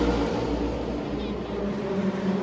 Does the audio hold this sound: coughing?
no